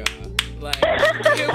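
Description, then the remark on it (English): A few sharp, scattered hand claps ring out, then a fuller burst of clapping swells with voices calling out underneath. “Can we just clap one time, y'all?”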